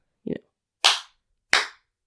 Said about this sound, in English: We do, in my house, we do three loud claps.